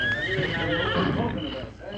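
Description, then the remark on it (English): A horse whinnies loudly, a bright, wavering neigh that rises and then trails off over about two seconds, with faint hoof or movement noise underneath. “Stay here, horse.”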